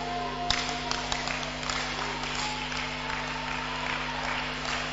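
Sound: audience clapping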